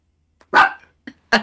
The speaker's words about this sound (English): Sorry, don't bark. She thought I was barking.